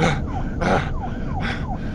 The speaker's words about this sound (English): Oh my God, we're gonna get killed! Hit the siren.